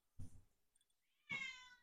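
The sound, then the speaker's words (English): A cat meows twice with a pause between: first a short, rough, low call, then a longer, clear, tonal meow, with no talking. “I'm waiting for the conversation between Drink Bitch and the cat”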